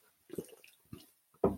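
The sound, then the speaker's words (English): A shot of Breckenridge whiskey being taken: a couple of quick wet gulping sounds, then a louder, breathy burst right after swallowing. “After the first one, after that first shot, it goes down.”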